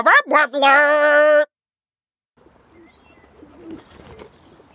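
A dove coos loudly on a tape being played, two short notes followed by one longer drawn-out coo, then silence before faint, scratchy background noise.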